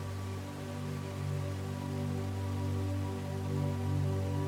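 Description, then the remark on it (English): A steady, hissing wash of ocean waves with gentle swells in loudness, layered over a low sustained tonal drone, with no voices present. “Listen to the sounds of the ocean, the waves, the birds.”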